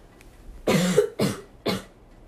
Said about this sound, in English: Hold on, I gotta cough.